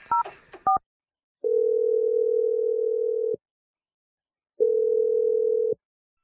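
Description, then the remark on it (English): A quick burst of touch-tone dialing beeps as a phone number is dialed for a call from the morning radio show Brooke and Jeffrey in the Morning, then two long, steady phone tones separated by a silent gap, clear with no voices. “We're going to dial Vince's phone number, try and get your second date update.”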